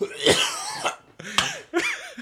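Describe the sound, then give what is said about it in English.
A person with whooping cough coughs three times in harsh, raspy bursts, each with a strained, voiced wheeze, separated by short pauses. “It's the whooping cough.”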